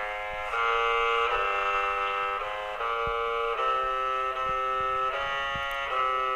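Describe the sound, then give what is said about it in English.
Machine music from 1951, courtesy of Alan Turing: early computer-generated music where a loud, buzzy electronic tone steps through a simple melody, each harsh, reedy note held for under a second before shifting pitch, with no voices. “Machine music from 1951, courtesy of Alan Turing.”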